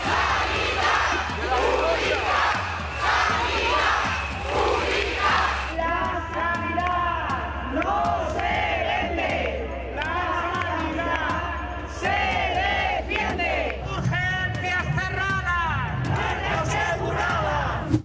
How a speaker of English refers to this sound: After years of staff shortage, it became the perfect storm for the population to erupt in a massive protest.